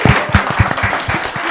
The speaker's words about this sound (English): Lovely. Come and get a round of applause for my panel. Woo!